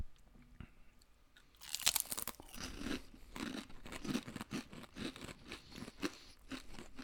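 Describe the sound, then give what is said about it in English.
A loud bite into a crisp vinegar potato chip, followed by a steady run of sharp, crackly crunches as it's chewed, with no talking over it. “That's a good chip.”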